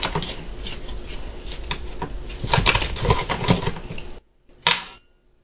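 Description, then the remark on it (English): A cat paws and taps at something near a microphone, making a steady stream of irregular clattering, scuffing knocks that grow busier midway, then stop briefly before one last sharp tap. No one speaks. “Your cat just wanted to get in on the rap conversation, that's all. Apparently, he was trying to provide a beat of some kind.”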